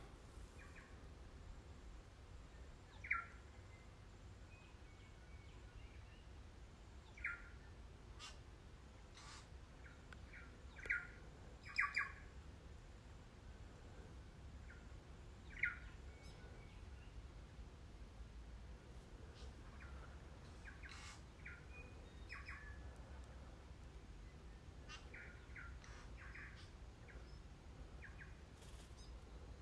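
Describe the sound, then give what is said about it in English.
Birds chirp and call outdoors in short, scattered bursts, right above the recordist, some faint, a few sharper and closer, over a steady low background hum with no talking. “So just maybe enjoy these birds for a minute.”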